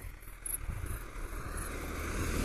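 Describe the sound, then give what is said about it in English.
A car approaches along Gore Lane, a quiet country lane, its low engine rumble and tyre hiss growing steadily louder over a couple of seconds, with some wind buffeting and no voices. “A rare car on Gore Lane.”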